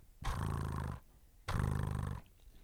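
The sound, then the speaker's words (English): Someone imitates a cat's purr with their voice: two loud, rumbling bursts, each under a second long, separated by a short pause. “I'm just going to do a little, like a little cat purr.”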